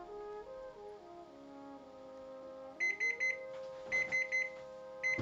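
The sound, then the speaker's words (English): A six-minute kitchen timer alarm goes off while cooking, sounding bright electronic beeps in quick bursts of four that repeat several times over a steady, low tonal drone. “Okay, just to clarify what you heard there, 6 minute timer goes off, turn off your heat. Set your timer for one more minute.”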